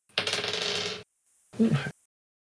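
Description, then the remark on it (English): A die clatters and rattles across a hard tabletop in a quick burst lasting about a second, followed after a brief pause by a short, muffled sound. “Let me just roll a die real fast just to see how long this takes.”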